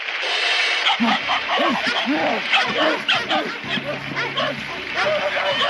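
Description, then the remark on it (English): Dogs yelp and bark in pitched, sing-song notes, one after another in a rapid, melodic run, loud and close over a hissy background with a steady low tone partway through. “Ladies and gentlemen, the unique and world famous attraction, singing dogs.”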